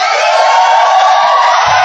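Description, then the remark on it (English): A large crowd shouts and cheers together in a loud, sustained roar of voices that fills the whole space without a break. “Something big is about to happen. Something that is worth shouting about.”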